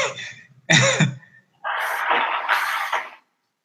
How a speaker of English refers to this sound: I'm sorry. I had to blow my nose real quick.